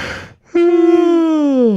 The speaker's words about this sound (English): Oh, wait. I have a yawn coming.